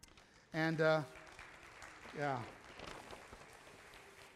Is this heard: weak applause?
yes